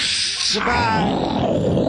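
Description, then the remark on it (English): A toilet flushes loudly: a bright hissing rush of water that after about half a second drops into a deeper, churning gurgle and swirl that carries on steadily to the end. “Okay, I'm going to flush it.”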